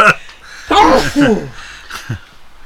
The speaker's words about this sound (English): You see. Bless you,